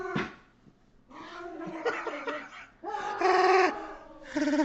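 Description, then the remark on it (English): A dog lets out a series of loud, drawn-out whining yowls, several cries in a row with short breaks between them and no talking. “You're making too much noise. Devil dog.”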